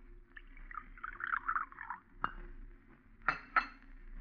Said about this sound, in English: Breakfast ready? In a minute. Here, I'll pour you some coffee.